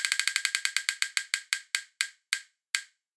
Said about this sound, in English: So we'll do one more spin of the wheel.